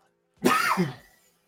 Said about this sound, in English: who just coughed? It was very masculine.